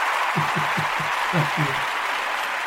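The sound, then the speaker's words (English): A crowd cheers and applauds a contestant who scored seven points, in a dense, steady wash of clapping, with a few whoops and voices rising in short bursts above the noise. “Let the audience cheer.”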